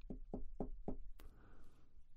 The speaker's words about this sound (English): So you could understand my surprise as an adult when there was a knock at my door.